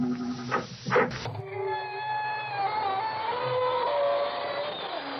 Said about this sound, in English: This is your host to welcome you through the creaking door into the inner sanctum.